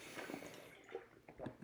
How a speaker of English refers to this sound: Let me take a quick swig of water really quick.